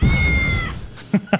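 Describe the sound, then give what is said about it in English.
A cat launched from a cannon, travelling 554 feet, lets out a loud, drawn-out yowl lasting under a second, followed by a few short, sharp bursts of noise in quick succession. “Kitty cannon. Love it. Love it. Poor kitty.”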